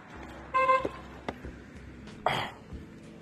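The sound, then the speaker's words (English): A single short car horn honk from a coworker beeping, a bright steady tone lasting a fraction of a second over low background rumble, followed by a couple of sharp clicks and a brief hissing burst. “My coworker just beeped at me. Scared the hell out of me.”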